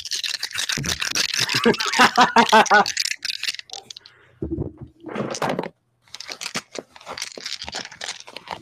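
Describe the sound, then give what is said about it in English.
Dice rattle and clatter loudly, a dense burst of clicking followed by a pause, a low hum, then more scattered rattling shakes. “I have turned the gain up on my microphone to pick up the sounds of these dice.”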